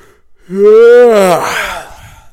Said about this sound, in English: Wow, that's a loud yawn.